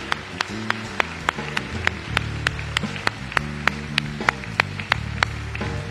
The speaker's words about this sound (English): Give the Lord a great clap of praise. Give Him love here today.